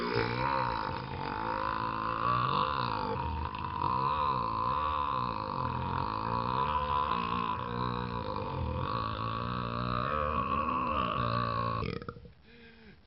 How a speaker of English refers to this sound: If you want to hear the story behind the 12-second belch